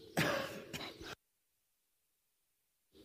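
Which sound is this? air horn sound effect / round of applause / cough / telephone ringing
cough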